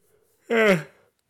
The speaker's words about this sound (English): don't know why I'm yawning so much. Oh, it's probably because I just ate.